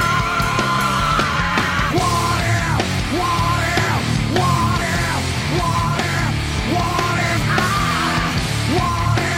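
A TV commercial for a soundtrack album blasts loud, distorted heavy rock with harsh shouted vocals, dense and continuous at a steady volume for the whole stretch, with no talking over it.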